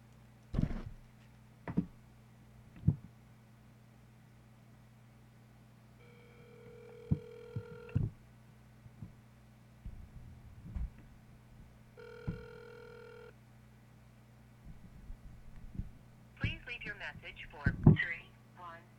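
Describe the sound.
An outgoing phone call placed by voice command rings through a handset speaker: two steady electronic ringback tones, a few seconds apart, with clicks and handling bumps around them and a brief burst of voice near the end.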